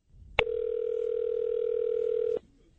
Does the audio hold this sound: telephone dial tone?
yes